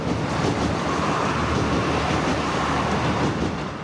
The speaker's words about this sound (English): But just behind the house runs a railway line. The Dublin Sligo line. The train will be a soundtrack to his personal life.